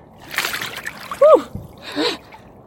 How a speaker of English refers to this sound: you were having your cold water swim there